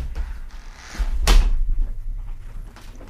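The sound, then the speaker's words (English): A door is opened because a cat was heard outside: a single sharp latch clack with a brief rattle, followed by soft handling noise over a low background rumble. No one speaks. “I'm sorry. I had to open the door.”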